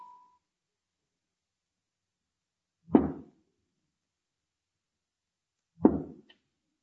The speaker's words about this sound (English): Two raps if you can come through. Three if there is interference. Do you hear me?